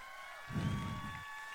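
A short burst of audience applause and crowd noise at an event with speakers swells up for under a second, then fades, over a steady, faint high-pitched electronic whine. No one speaks.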